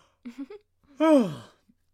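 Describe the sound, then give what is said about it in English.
A drawn-out yawn with a breathy, falling voiced tone lasting about half a second, preceded by a few brief soft vocal murmurs. “I'm gonna yawn again.”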